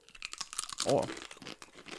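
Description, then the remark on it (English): Loud crunching as someone takes a big bite of hard, crunchy garlic chips, a burst of brittle cracking peaking near the middle, with scattered crinkly crunches before and after. “Wow, they're pretty hard. Wow. They are crunchy. They're crunchy. I took a big bite.”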